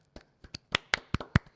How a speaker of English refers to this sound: So I would like to applaud for this.